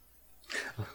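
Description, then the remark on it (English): A single sneeze: a sharp, hissing burst of breath followed by a brief low grunt, then quiet. No one speaks. “Bless you.”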